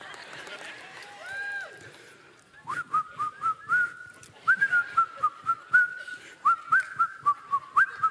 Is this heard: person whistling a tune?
yes